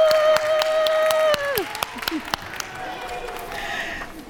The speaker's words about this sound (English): So let's clap for the twins family. Woo!